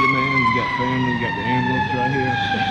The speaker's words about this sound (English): Family, you got the ambulance right here.